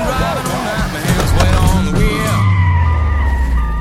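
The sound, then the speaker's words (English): A loud car chase from an Edgar Wright film, done with practical effects and real stunt driving: engines roar steadily while tires squeal and screech in repeated rising and falling wails, ending in a long skid. “We see all these practical effects of all the car chases and car crashes.”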